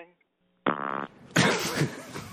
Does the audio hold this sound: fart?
yes